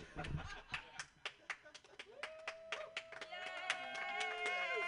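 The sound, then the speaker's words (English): Steady, rhythmic hand clapping from a small audience, sharp claps repeating at a brisk even pace, with a voice rising over the claps in the second half. “Keep your hands clapping”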